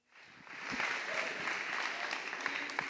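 An audience breaks into applause, many hands clapping in a dense, steady patter that swells within the first half second and holds at a moderate level without any talking.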